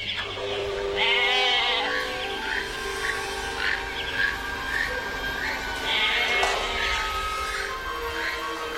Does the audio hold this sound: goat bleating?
yes